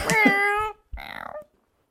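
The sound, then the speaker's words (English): A person imitates a cat with a drawn-out, wavering meow, then after a short pause a second, buzzier trilling mew, both fairly loud, with silence afterward. “The cat translation is.”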